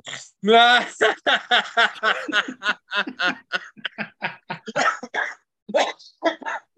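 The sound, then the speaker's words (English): A man coughs in a long, rapid series of harsh bursts, starting with a strained voiced hack and continuing as choppy, sputtering coughs that sound almost like laughter. “made him cough.”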